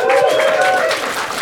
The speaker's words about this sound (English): This is my good friend, Huge Davies. Can you please give him a round of applause?